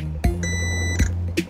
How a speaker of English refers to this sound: If the multimeter detects connectivity between those two points, an audible beep will occur. If not, then no beeping shall occur.